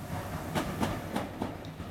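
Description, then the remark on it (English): A train rolls along the rails with a steady, rhythmic clickety-clack of wheels over track joints above a low rumble, without any voices. “Be on this train.”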